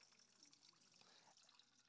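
A steady, continuous stream of water pours into a container, a soft rushing trickle that holds an even level throughout with no voices over it.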